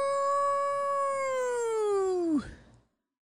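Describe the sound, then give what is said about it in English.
A voice imitates a wolf howl: one long, steady note that slowly sags in pitch for about two seconds, then swoops sharply down and cuts off. “The wolves are out.”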